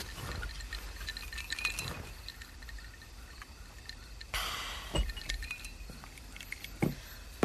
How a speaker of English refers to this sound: Hold on, I need to wet my whistle.